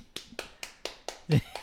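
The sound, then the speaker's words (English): Steady, evenly spaced hand claps, about four per second, from a small live audience clapping in time, with a brief voice cutting in near the end. “Everybody clap.”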